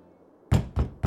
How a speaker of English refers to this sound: I went up and knocked on the door, but she wouldn't answer.